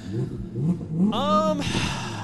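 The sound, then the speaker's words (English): A voice imitates a revving car engine with a couple of buzzing, rising "vroom" sounds, fairly loud, the last rev climbing sharply in pitch before cutting off into a breathy rush. “Car noises. Vroom, vroom. Vroom, vroom.”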